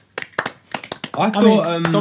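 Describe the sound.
Brief applause: a handful of sharp, uneven hand claps, then a loud voice calls out over the last few claps.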